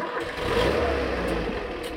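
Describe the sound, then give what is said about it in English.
The engine of a Pinzgauer, a secondhand Austrian military troop carrier used as an open-sided safari vehicle, starts and runs with a steady, gravelly rumble and rising rev, holding a constant loudness for the full two seconds with no voices. “These are our safari vehicles. They're okay. Austrian troop carriers, Pinzgauers they're called.”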